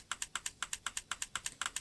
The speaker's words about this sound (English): It said the word Louise, which indicates that she's typing, and then you heard the typing indicator sound